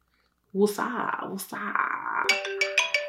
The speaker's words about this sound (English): Wait, is my phone ringing? Hello?